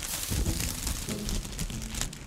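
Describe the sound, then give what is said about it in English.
A plastic bag is crinkled and crumpled to mimic a burning fire torch, producing a steady, dense crackle like a small fire, with no talking over it. “I have a fire torch burning already to help guide the way. That's just a plastic bag.”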